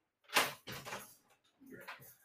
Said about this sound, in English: Sorry about that. Somebody just came to the door.